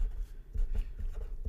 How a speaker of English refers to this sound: For some reason, I'm writing that down on a piece of paper as I say it.